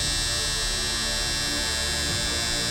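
A steady Manscaped 3.0 electric body hair trimmer buzzes without a break while shaving a man's groin, a constant motor drone with a bright, dense high-pitched whine. No one speaks over it.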